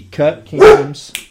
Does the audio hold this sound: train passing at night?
no